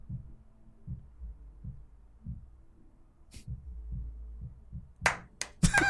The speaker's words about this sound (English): The only sound is the dude's music next door.